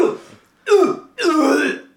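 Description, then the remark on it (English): A wet, gurgly throat-clearing in three rough bursts, the last one longest and strained, with no talking over it. “It's when you're all foamy in your throat area. You're just like phlegmy.”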